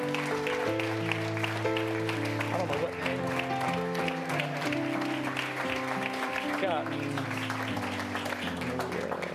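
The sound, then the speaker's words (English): A standing church audience claps steadily and loudly for several seconds, giving a hand to the Lord in encouragement of those present. It is a dense, continuous wash of hand claps, with sustained organ-like chords and a scattering of voices underneath. “But can y'all stand and give a hand to the Lord in encouragement of those here today?”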